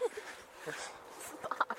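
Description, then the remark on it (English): A few short, sharp dog barks come in quick succession toward the end, faint against a low murmur of background noise and indistinct voice-like sounds. “And dogs are barking now.”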